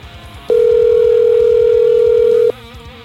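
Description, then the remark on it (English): A single steady telephone ringback tone of an outgoing call placed on the Ollie's Barn Grill soundstage phone system holds loud and even for about two seconds, then cuts off over a faint low murmur. “Ooh, it's ringing. It's ringing.”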